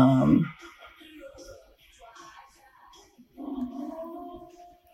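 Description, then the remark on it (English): A wolf howl sound effect in a movie: a deep growling animal cry opens, followed by a quieter stretch, then a long, sustained, mournful howl rising in the final seconds, steady in pitch. “The foreboding wolf howl sound effects.”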